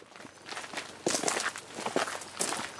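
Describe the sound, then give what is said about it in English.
Footsteps walking from a car park beside a visitor centre towards Castell Penryn castle at a steady, unhurried pace, each step a soft scuffing thud, repeating about twice a second with no voices. “We pull into a car park tucked in the trees next to a visitor centre, and then we start walking towards the castle.”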